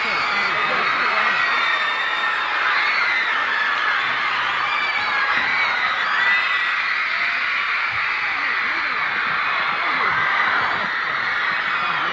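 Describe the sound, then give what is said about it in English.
A huge crowd of fans screams continuously at full volume, a dense, shrill wall of high-pitched shrieks and cries that never lets up. “Now, when they're finished, the screams keep going on.”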